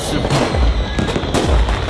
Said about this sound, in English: I didn't know you liked fireworks. Look at this.